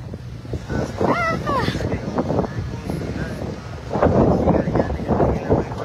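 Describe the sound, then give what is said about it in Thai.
Strong wind buffets the microphone in a steady low roar that swells louder toward the end, with voices faintly audible underneath. “โอ้ยพักแป๊บลมแรงไม่ไหว”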